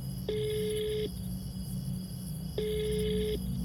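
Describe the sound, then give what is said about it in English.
Two ringback tones heard through a phone line, each a steady electronic buzz of about a second, separated by a pause, over a low hum with no talking. “God, it's ringing.”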